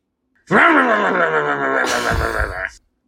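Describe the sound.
A man's voice imitates an engine, a loud sustained humming drone that swoops up in pitch, holds steady for about two seconds, then turns rough and rattly before cutting off.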